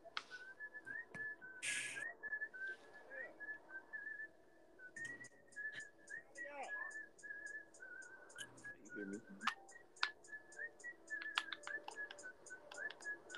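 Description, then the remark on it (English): A clear whistled song melody carries through the whole clip, over a steady, rhythmic clicking beat that sets in partway through. No one speaks. “I'm still mad I can't whistle. That song pissed me that hell off.”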